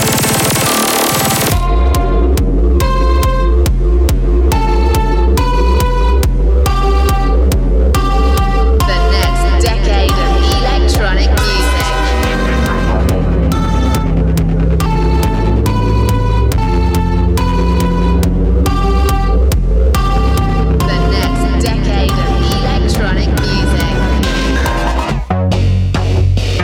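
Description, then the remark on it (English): A loud electronic rave track pounds along with a fast, steady kick drum, buzzing synth bass and bright stabbing synth chords, shifting into a fuller groove about halfway through with no vocals. “Decade of electronic music probably sounds a bit like this, right?”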